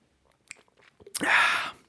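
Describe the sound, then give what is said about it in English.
Someone drinks water: a few soft mouth clicks, then a loud, breathy slurping sip lasting under a second. No one speaks. “Oh, hold on. I need my water.”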